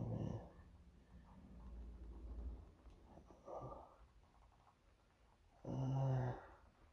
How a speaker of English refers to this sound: Don't do that to me, damn cat. Shit. What you scratch me for, man? I ain't do nothing to you. Jeez, I told you I got cats in the studio.